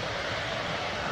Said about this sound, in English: Let's go to the video which shows the plane arrive.